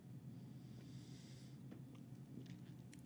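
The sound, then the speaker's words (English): A quiet sip from a drink: a soft airy slurp followed by a few faint wet clicks and a swallow, over a low steady background hum with no talking. “All right, let's go ahead and take a sip real quick.”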